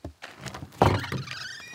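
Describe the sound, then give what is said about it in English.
The front door of Bob Smakula's instrument-repair workshop in Elkins, West Virginia, opens with a solid thunk and a brief rattle, followed by a faint high-pitched squeal or ring as it swings. “Walk through the front door of Bob Smakula's workshop, and honestly, it's a lot to take in.”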